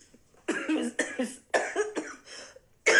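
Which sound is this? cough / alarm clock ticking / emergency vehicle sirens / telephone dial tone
cough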